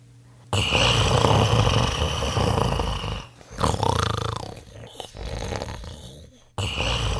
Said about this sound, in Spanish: Pronto el gigante se quedó dormido, y sus resoplidos y ronquidos hicieron eco en toda la sala.